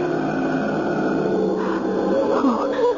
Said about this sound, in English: First I could hear his breathing.